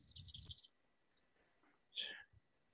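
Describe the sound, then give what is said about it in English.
A short burst of rattling and clattering as five dice are shaken and rolled, followed by a single sharper clack a moment later, then quiet. “So I roll five dice and successes are seven higher.”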